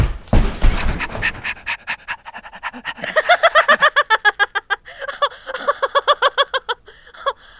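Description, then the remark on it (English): A person pretending to be a dog during mock dog training imitates panting with quick, rhythmic breathy huffs, fairly loud, running steadily for several seconds after a brief rustling start. “Go get it. Arf, arf.”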